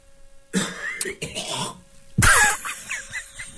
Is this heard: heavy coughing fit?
yes